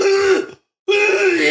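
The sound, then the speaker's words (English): A person gives an exaggerated, deliberate cough: two loud, throaty voiced bursts separated by a brief pause, with no talking. “Performative coughing, sorry.”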